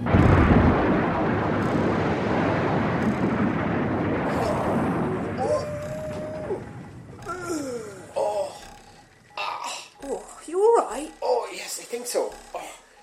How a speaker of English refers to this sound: It's not working, we're gonna crash! Crashing a bit. Crashing.